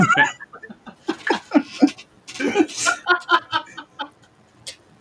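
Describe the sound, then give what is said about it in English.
A witch-like cackle Halloween sound effect: a rapid string of shrill, clucking bursts rising and falling over about four seconds, loud, then trailing off into quiet. “that did sound a lot like the witches that show up in Cat's Paw”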